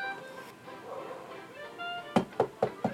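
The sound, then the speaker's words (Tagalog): Four quick, solid knocks on a door in an even rhythm, loud, after a stretch of faint steady tonal background sound. “may kumakatok ata.”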